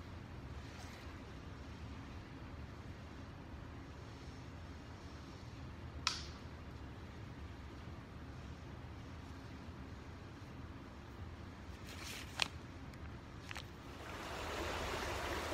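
Steady, continuous rushing of flowing river water fills the scene, broken by a few sharp clicks, with the water noise swelling a little louder near the end. No one speaks.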